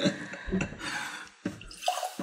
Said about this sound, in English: I'm trying not to spill, guys. Yeah, please don't. I spilled a little bit. Oh, I should use my more pour spout.